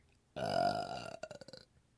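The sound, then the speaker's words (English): A single long, loud burp, starting abruptly with a deep resonant tone and breaking into a rattling, stuttering tail before trailing off. No talking. “Oh, the burp always signifies, you know, Florida man.”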